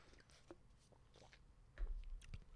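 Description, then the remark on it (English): Quiet mouth sounds of someone sipping tea: small wet slurps and swallows, then a soft low thump near the end, with no one talking. “Well, I'm going to take a sip real quick of tea, and I'm going to look at some of the questions.”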